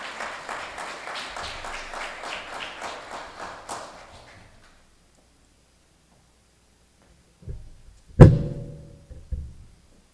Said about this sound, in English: Let's bring her to the rostrum with an incredible round of applause